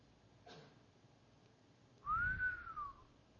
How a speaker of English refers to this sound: Wow. Actually, no, it needs to be a better whistle than that.